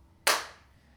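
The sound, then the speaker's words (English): One sharp hand clap rings out, a sudden bright slap that fades quickly into a short echo, with no voices around it. “New clap.”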